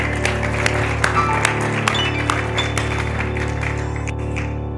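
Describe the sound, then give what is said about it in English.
An audience at a church service applauds steadily for several seconds, a dense wash of many hands clapping with sharper individual claps popping out, holding an even loudness before thinning slightly at the end. “them applause. Come on, they did great.”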